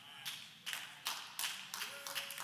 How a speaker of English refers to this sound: I got four people clapping.